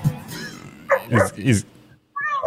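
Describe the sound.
A small dog named Georgie lets out a quick run of high, sharp yips, three short bursts close together, while bouncing and doing flips on a trampoline, with a person's voice heard before and after.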